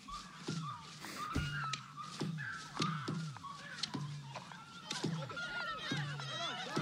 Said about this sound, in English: I fucking hate birds.